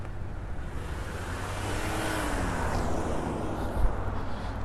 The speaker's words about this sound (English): Let's get out of the street before this car decides what they want to do.